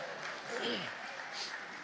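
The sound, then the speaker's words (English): A crowd claps steadily for a couple of seconds for a speaker who says he is nearly 70 years old: a dense patter of many hands, with a voice or a cheer rising briefly in the middle. “Come on, that's worth a clap right there.”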